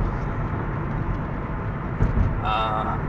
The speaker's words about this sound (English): Like, there's just this really loud engine noise in the background. You can't hear anything I'm saying.